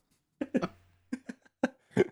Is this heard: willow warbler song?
no